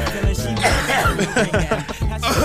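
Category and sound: human body sound, coughing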